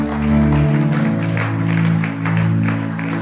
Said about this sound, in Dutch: Laten we zo'n groot applaus geven als ze komen.